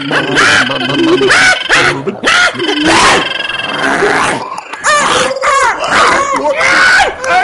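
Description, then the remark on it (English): Several voices at once make loud, chaotic animal noises, with warbling whoops, squawks, yelps and grunts that imitate weird bird calls and sounds of the forest, overlapping continuously for several seconds. “so on three, why don't we all do some, like, weird bird calls? And some weird sounds of the forest.”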